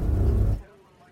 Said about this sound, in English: The stakes were high, and real uncertainty awaited that 707 as it taxied up to the jetway and came to a stop.